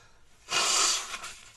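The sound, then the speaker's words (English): A man with a cold gives a single short, forceful nose blow, a breathy burst of hissing noise lasting about half a second, with quiet stillness before and after. “And pardon me, I got to blow my nose for a second.”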